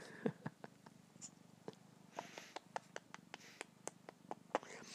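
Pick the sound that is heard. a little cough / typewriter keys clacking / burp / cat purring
cat purring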